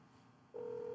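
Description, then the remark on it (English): A steady electronic phone tone switches on halfway through and holds clearly to the end, like the ringback heard while an outgoing call rings. It sounds alone over faint background hiss. “Okay, so it's just ringing.”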